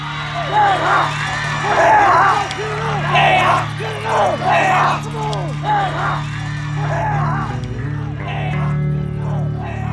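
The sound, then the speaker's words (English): A crowd at a football game cheers on the Tigers as they win 21-19, many overlapping voices rising in loud, excited bursts over a steady background roar for the full ten seconds. “Watching the Tigers win, 21-19, completely outmatched, everyone together, cheering them on, I knew the answer.”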